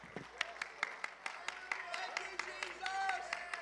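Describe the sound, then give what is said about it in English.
An audience at a Sunday morning church service claps hands in praise in a steady, rhythmic beat, sharp claps repeating quickly, with voices calling out and a sustained tone underneath throughout. “Stand to your feet, clap your hands and shout hallelujah.”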